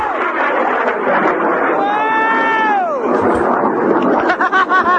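A rocket launch from the Science Detective series: a rough, continuous roar runs throughout, while a bright harmonic whine curves upward and then falls away over about a second, ending in sputtering bursts.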